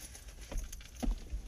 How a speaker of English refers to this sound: I think I got the keys. Before we leave, let me put those in my pocket. Okay. I'm just going to do it right now while I'm looking for the keys.